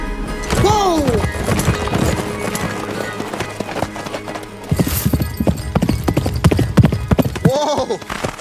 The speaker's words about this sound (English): Boss, I'm flabbergasted. Why we stop? When you see a black man on a horse going that fast, you just gotta let him fly. You right. That's a horse horse. That is a horse horse.